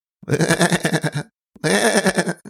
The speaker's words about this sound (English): You hear some goats bleating.